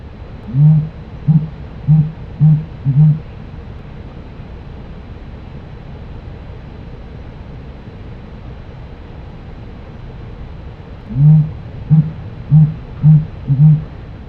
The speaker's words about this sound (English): They produce this low, hooting sound as they strut repeatedly back and forth over open ground with their tail spread, their air sacs, and eyebrows exposed. This is what the dusky grouse courtship sound sounds like.